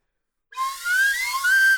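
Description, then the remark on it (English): A broken slide whistle is played as a test, giving a breathy, wavering tone that glides up and down for over a second, changing partials halfway through the slide, with a noisy, airy hiss beneath the pitch, and no one talking. “Here, let me test it out with my broken slide whistle.”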